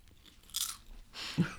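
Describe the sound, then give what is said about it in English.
Two sharp crunches about a second apart, the second with a dull low thump, as someone bites down on a last little popcorn kernel. No one speaks. “Just get one last little popcorn kernel here.”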